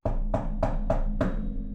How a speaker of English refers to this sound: I went and knocked on the door.